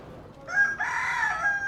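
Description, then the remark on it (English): A rooster crows once in the early morning in the Bagadaji neighborhood of Bamako, Mali, a drawn-out cock-a-doodle-doo that rises in two strained, harmonic-rich bursts and holds a high, hoarse tone before trailing off, loud over a quiet background. “The rooster's cry slowly lifts the curtain of early morning.”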